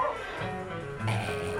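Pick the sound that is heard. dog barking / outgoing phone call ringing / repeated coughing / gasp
dog barking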